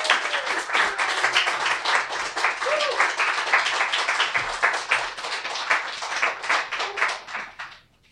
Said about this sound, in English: Let's give a big round of applause for Alexander Chi.